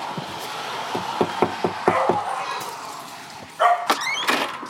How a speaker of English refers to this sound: I didn't think that dog would bark.